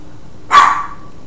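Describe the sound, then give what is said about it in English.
A dog in the background gives a single sharp bark that trails off quickly, standing out clearly against a quiet background with no one talking. “Our brood dog in there, Bocce, is barking his approval, so you might be able to hear that in the background.”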